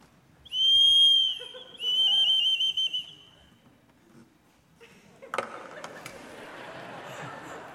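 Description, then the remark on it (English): A shrill whistle, an instrument made to replicate a bird's mating call: one sustained piercing tone bending downward, then a rapid warbling trill, both loud, followed by quieter rustling and clatter. “It's supposed to replicate a bird sound, a mating call.”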